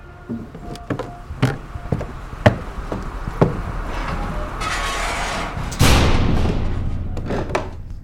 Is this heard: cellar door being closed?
yes